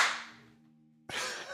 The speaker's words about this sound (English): That sounded so loud. I don't know if it was just the echo of your kitchen, or if you're doing like an Incredible Hulk, like yeah, like trying to blow someone away with the force of your manly clap.